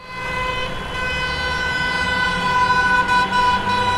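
Car horns blare in a long, steady chorus over a low rumble of idling engines, like a loud, close traffic jam with no one speaking.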